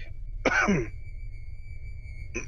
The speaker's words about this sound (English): You've had that cough for like, it feels like 2 months. Yeah. It's getting better though. It was a lot worse last week.